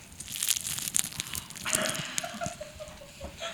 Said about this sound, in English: That was also, if we still have that sound bite, that was the super crispy chicken.